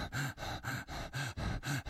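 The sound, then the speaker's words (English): A person demonstrates the breathing of a fight-or-flight response, breathing rapidly and heavily in quick rhythmic in-and-out pants, about four sharp breaths in under two seconds, with no talking. “So instead of a normal relaxed breath, my breath starts going.”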